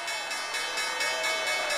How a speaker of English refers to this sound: And then the person in front pushes a button. The opening bell of the New York Stock Exchange.